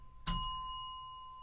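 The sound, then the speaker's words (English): A small bell is struck once, giving a bright, clear ding whose metallic tone rings on and slowly fades, with no voices over it. “Hit the bell twice.”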